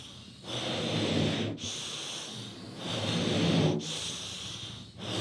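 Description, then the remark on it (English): Several long, breathy inhalations follow one another, each a rushing, hissing draw of air lasting over a second, separated by brief pauses, as three people suck laughing gas from balloons. “I'm watching three people suck balloons.”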